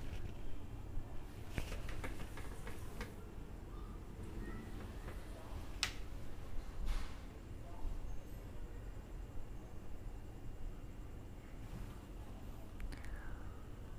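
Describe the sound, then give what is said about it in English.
Dry leaves skitter and scrape over a road in short, irregular bursts of crisp ticking, heard over a steady low rush of wind. No one speaks. “It's quite windy now, and I can hear the dry leaf rolling on the road.”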